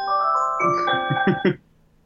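A phone ringtone plays a short electronic melody of bright, steady synthetic tones, with a few quick notes stepping along before it cuts off abruptly after about a second and a half.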